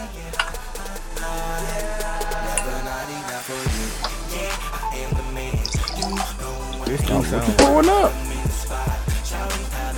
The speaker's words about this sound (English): Okay. Water out of my Brita. There you go.